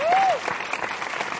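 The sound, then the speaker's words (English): A large audience at LA Podfest applauds themselves, dense rapid clapping steadily, with a brief whistle-like tone rising and falling at the start. “please, everybody, give yourselves a round of applause, please.”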